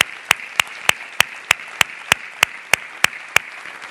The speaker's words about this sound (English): I think that deserves a great big hand clap of praise.